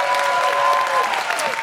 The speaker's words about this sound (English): Can we have a huge round of applause for everyone at King's Place?